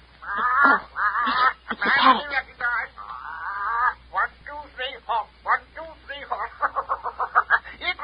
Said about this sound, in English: That's the signal the parrot always gives when somebody comes near. It's my warning.